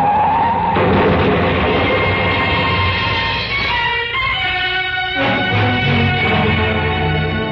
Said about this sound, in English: In my ears was the screeching of brakes, of tires taking a wild curve.